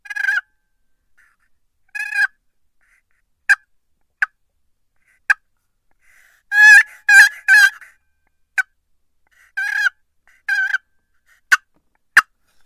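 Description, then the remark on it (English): Soft turkey calling made by a person imitating a turkey: scattered sharp single clucks, a couple of rolling purrs, and a quick two-note double yelp, spaced out with quiet gaps and no talking. “Just some purrs, some clucks, just a little double yelp.”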